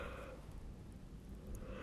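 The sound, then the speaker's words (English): A long, breathy yawn, soft, one continuous drawn-out exhale lasting nearly two seconds with no talking. “You're getting contagious. Yawn's listening to this.”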